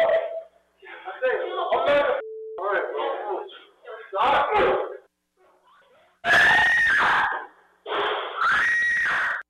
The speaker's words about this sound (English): Yelling, "I'm going to fight for Jesus," as his brother tries to calm him down, and then an ear-piercing, blood-curdling scream like this is a horror movie.